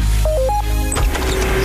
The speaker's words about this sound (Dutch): Het iets piepende, zingende geluid op de achtergrond is het geluid van kleine karretjes met achter elk karretje bloemen in alle soorten en maten en kleuren. Ik sta midden op de handelsvloer van de Royal Flora Holland Veiling in Aalsmeer.